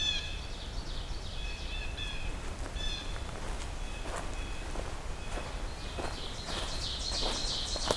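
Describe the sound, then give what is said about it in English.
Blue jays call several times in short, harsh bursts, while footsteps crunch and rustle steadily through leaf litter. “Some blue jays.”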